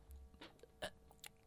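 A short, gulping burp, with a few brief throaty bursts close to the mic against a quiet background, and no one talking.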